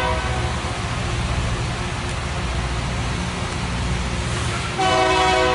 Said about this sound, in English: Definitely wasn't expecting a train to come by today.